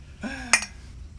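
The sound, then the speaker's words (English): Two glasses touch in a toast with a single bright, ringing clink, fairly loud, with a short voiced sound just before it and quiet afterward. “Hey. Cheers.”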